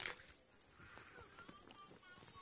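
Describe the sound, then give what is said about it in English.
A quiet crunch of a bite into an apple, followed by a steady series of soft, moist chewing crunches repeating every fraction of a second. “I'm chewing it.”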